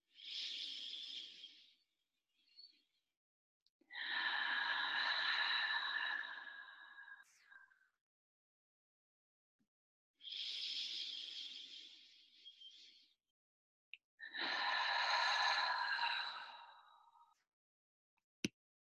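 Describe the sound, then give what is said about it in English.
Slow, deep breaths: two full cycles of airy inhales followed by long, whooshing exhales, separated by brief pauses, with no talking. “So we fill up to our fullest point, and then we let go, and then exhale, travels out on its own.”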